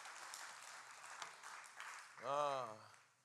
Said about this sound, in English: If you're glad about it, won't you clap your hands and stand as you're clapping?